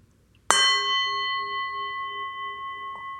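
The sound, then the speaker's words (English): A single meditation gong is struck once to begin a guided meditation, ringing out loud and clear with a bright shimmering tone that sustains and slowly fades, with no voices present. “I'll hit the gong, and when we finish, I'll hit the gong again.”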